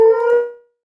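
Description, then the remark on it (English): A puppy lets out one short, loud, tonal howl that holds steady for about half a second before trailing off into silence. No one speaks. “Sorry, the puppies are crazy.”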